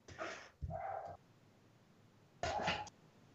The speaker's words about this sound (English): See, the dogs agreed with me.